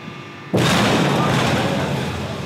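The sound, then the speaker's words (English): A steel tanker imploding under vacuum: after a brief hush, a sudden huge boom bursts out and rolls into a loud, sustained roar of crumpling metal that slowly fades. “Have you ever seen a tank implode?”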